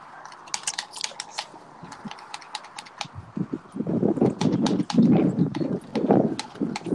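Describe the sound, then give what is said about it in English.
Rapid, uneven plastic clicking of Xbox controller buttons being tapped hard while someone plays Xbox, with a busier, rattling stretch of mashing in the second half. No voices. “I'm playing Xbox. Tapping the controller hard as shit.”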